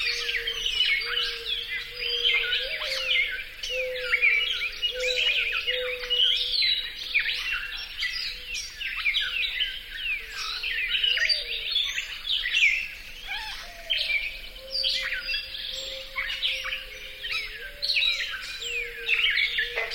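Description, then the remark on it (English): A dawn chorus of songbirds in a shrub swamp in the Pocasset National Wildlife Refuge, North Carolina: a gray catbird's busy, varied chirps and phrases layered over the low, soft cooing of mourning doves, with a Carolina wren and a northern cardinal in the background, steady with no talking. “set themselves up at dawn in a shrub swamp in the Pocasset National Wildlife Refuge in North Carolina and recorded these solos of mourning doves and gray catbirds. Carolina Wren and a northern cardinal provide the backup vocals.”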